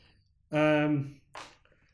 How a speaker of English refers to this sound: I'm going to aggressively flip my paper.